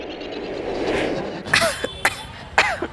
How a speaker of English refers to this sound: Hello, Daddy. Why are you coughing again? You know why, no? My throat always feels like sandpaper when the air is this gray and smoky.